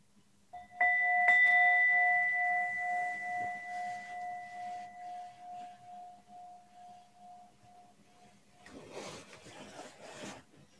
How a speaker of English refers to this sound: So I'm just going to ring the bell in a moment.